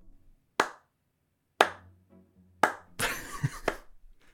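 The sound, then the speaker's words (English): Thin, unenthusiastic applause: three sharp, evenly spaced claps about a second apart, then a short, denser flurry of clapping that quickly fades. No voices. “your explanation will probably end with rapturous applause from everyone in attendance”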